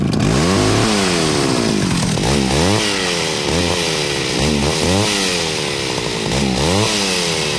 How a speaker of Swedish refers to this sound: Alltså, fram med det här sågen. Jag tar fram sågen igen.